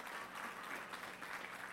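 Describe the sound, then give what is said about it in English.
About five scattered claps from an audience, quiet, pattering unevenly for a couple of seconds with no one talking over them. “Thank you for the five claps.”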